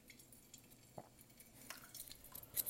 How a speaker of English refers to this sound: All right. Let me rinse my paper filter.